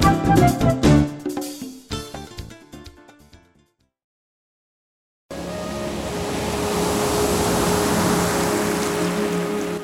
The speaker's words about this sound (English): Luscious ocean waves, peaceful music, inviting us to spend time together in the quiet.